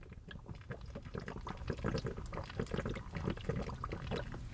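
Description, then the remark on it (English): Sounds of someone drinking water in a steady run of gulps and swallows, wet and fairly quiet, lasting several seconds with no talking. “But I'm gonna take a sip of water.”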